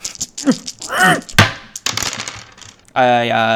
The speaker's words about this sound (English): Sure. You ready for me to roll the dice? I am. Okay.